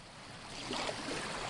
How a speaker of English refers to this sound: We're wading out into the tidal flats.